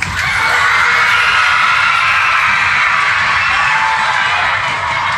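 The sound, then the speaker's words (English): An audience of children stamps their feet, claps and cheers together at Christmas, a loud, steady roar of shouting voices over a dense rumble of thumping feet that holds for about five seconds. “Every time I wave my wand like this, I want you to stamp your feet, clap your hands and cheer as loudly as you can.”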